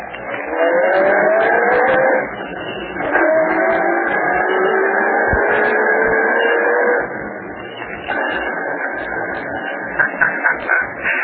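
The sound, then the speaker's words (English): A car engine revs up and rises in pitch as the vehicle pulls away, the steady motor roar shifting through gears and continuing loudly with no voices. “Okay, you two. Get in the car.”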